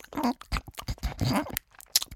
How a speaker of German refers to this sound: »Nein«, die Stimme klang fast beleidigt, dann biss sie wieder laut und schmatzend ab.